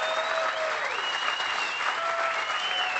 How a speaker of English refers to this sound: And give his crew a big round of applause. They've done a great job.